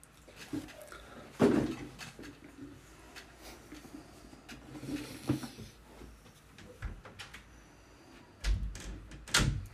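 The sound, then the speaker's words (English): A door swings shut with a solid thump, followed by scattered knocks and shuffling in a room, with faint muffled voices in the background and another bump near the end. “Grab a chair. Close the door.”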